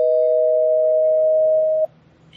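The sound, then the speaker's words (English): A loud, steady bell-like electronic tone, rung as a spoiler warning, holds one mid pitch for nearly two seconds, then cuts off abruptly into near silence. No one speaks over it. “All right, well, I'll ring the bell.”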